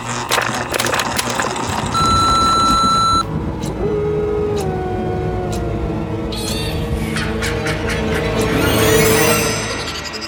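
A single steady answering machine beep for callers to leave a message rings out for about a second, loud, over a busy, rumbling background with faint gliding tones and clicks. No one speaks.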